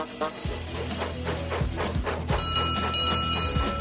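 Slow, rhythmic chuffs of Duck, a steam engine coupled to the coach Hannah, puffing slowly out of a siding, each breathy burst spaced about a second apart, with light music playing underneath and no talking.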